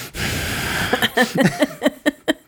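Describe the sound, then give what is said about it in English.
Heavy breathing picked up by a microphone with its gain set a little high: one long, noisy exhale, then a quick run of short, rhythmic huffs, loud. “You probably do have the gains a little high. Do I? Yeah. I can hear all your breathing.”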